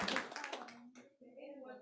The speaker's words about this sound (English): Clap Amen. For Jesus.